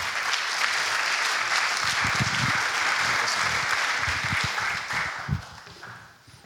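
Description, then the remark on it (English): An audience applauds to welcome a speaker to the stand, a dense wash of many hands clapping together at steady volume, then thinning and fading away over the last couple of seconds. “Would you please give him a big round of applause?”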